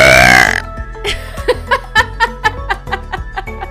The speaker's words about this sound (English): He wanted to pause for a second so that I could burp. And you did a great burp. That was a good one!